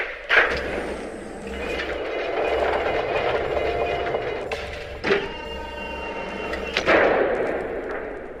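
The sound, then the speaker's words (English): Heavy doors of the monastery of the Order of Korthos slide open mechanically with a long, rumbling grind, punctuated by loud clunks at the start, midway and near the end. No one speaks. “Open the doors.”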